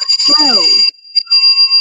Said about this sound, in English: As he leaves, the doorbell rings.